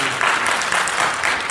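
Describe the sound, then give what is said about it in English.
An audience breaks into steady applause at the words that Ohio State is going to beat Michigan, a dense wash of many hands clapping at once, loud and continuous for the whole moment with no voices standing out. “Yes, you can clap.”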